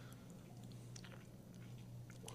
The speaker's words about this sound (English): Just took a sip of bourbon B. Bourbon B has a more interesting nose. It has like almost like a little funk on the nose, which is not very common, at least for bourbons that I've had.